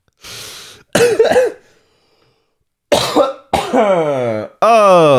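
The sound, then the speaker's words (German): A heavy, chesty coughing fit from a man with mucus in his lungs: a few harsh bursts, a brief pause, then loud, strained coughs that rasp into hoarse, voiced hacking. “Hat sich nur angefühlt, als würde mein Stimmband zerreißen. Bei dem Huster.”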